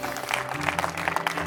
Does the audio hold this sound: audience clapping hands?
yes